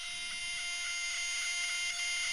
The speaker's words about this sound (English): This is a pulsar, and it's rotating at 1/7 of the speed of light. That's the sound shit makes when it spins that fast.